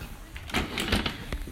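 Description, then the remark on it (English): Chairs being moved and put away to open up more space inside, a cluster of scraping knocks in the middle, then one sharp clunk, moderately loud with no talking. “I'm going to put some of the chairs away here to open up a little more space on the inside.”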